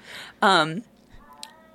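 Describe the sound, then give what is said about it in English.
A single loud, drawn-out cat howl, sliding downward in pitch before cutting off, surrounded by faint background noise. “I don't know if that cat howling is going to make it to the fucking, God damn it.”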